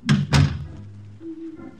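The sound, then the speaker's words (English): A heavy door thuds shut at the servants' entrance of a large house 12 miles south of Paris: two quick, solid knocks of impact, the second slightly louder, then a low resonant decay with a faint hum trailing into quiet. “Celeste's personal maid, who answered the door.”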